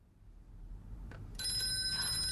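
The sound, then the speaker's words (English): A telephone bell starts ringing with a bright, metallic, high-pitched trill on a phone that works again. It comes in loudly over low background rumble after a brief click, and no one speaks. “It works. Answer it, quickly.”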